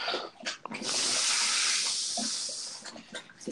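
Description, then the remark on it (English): A dog named Damon drinking water, wet lapping splashes around a long, steady hissy wash in the middle, with a few short sloppy laps before and after. No one speaks. “Is somebody drinking water?”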